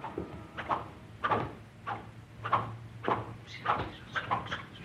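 Shoes of a couple of nuns squeak rhythmically with each step as they walk at a steady pace into Orly Airport, about nine short chirping squeaks in a row over a faint low hum.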